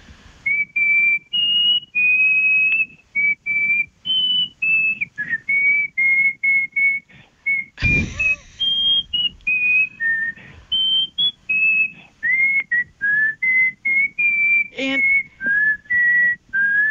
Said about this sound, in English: So I would try to figure out, what is the funniest song I could whistle? And I'll whistle one for you right now. I won't tell you what it is. You can guess it, okay?